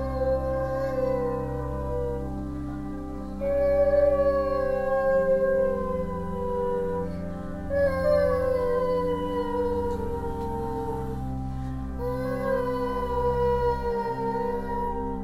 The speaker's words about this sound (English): Lilia listened to us howling together.